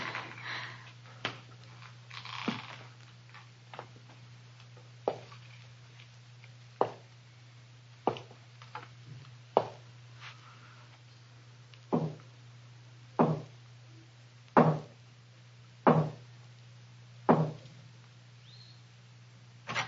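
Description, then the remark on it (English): Slow, heavy footsteps climb the creaking wooden staircase of an old house, each thudding step evenly spaced and growing louder, over a steady low hum. “I heard the feet coming up the stairs, or was it just the creaking of the old house?”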